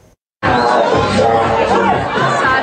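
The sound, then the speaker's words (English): Loud, dense crowd chatter from a large crowd partying on a Monday night at a restaurant at the Big White Ski Resort east of Kelowna, after a brief silent moment; many overlapping voices talk and shout at once in a lively party hubbub, with occasional higher-pitched exclamations. “A large crowd of people partying at a restaurant at the Big White Ski Resort east of Kelowna.”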